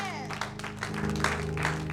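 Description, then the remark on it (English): A church audience bursts into steady, dense clapping for the Lord Jesus that fills the room, layered over sustained organ-like tones, with voices faintly mixed into the applause. “Clap for the Lord Jesus.”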